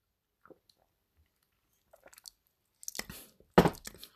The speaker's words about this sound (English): So this, as I say, is Sainsbury's Taste the Difference London Porter. 500ml, 5% volume. And I'm going to give it a sip and let you know.